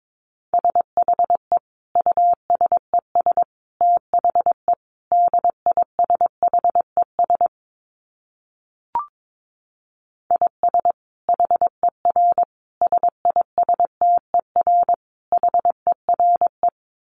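Morse code at 22 wpm: a single steady mid-pitched beep keyed in rapid dots and dashes, two long runs split by a pause with a faint click between them.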